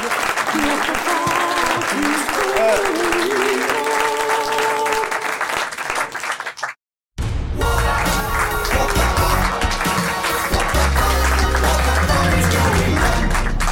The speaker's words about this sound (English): But for now, please, a huge round of applause, please,